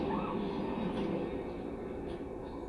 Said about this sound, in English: Oh, did a train go by? No idea.